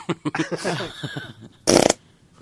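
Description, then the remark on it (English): A voice imitates a wet fart with a run of quick sputtering, buzzy bursts, then a louder, spraying blast near the end, with no other talk. “That's what the fart sound like.”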